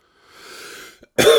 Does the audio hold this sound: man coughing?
yes